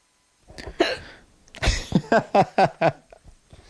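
Hiccups up close: a couple of sharp, breathy jolts, then a quick run of four short voiced hiccups in a steady rhythm, with no talking.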